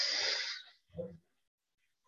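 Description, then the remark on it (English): A long, airy breath rushes out, followed by a shorter, softer breath and near silence before another breath begins; a person breathing deeply in and out. “Let's take a couple deep breaths to get us settled in this now moment. Breathing in and out.”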